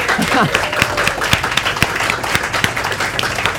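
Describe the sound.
An audience applauds steadily, many hands clapping in a dense, continuous wash with a few louder sharp claps standing out, plus faint voices mixed in.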